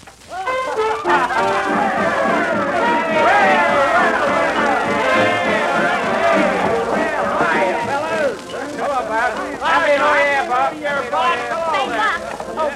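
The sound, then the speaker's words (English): A dense hubbub of many overlapping voices fills a parlor, steady and fairly loud, like a crowd chattering and laughing at a party with no single voice standing out. “come in the parlor, Buck, where the crowd is”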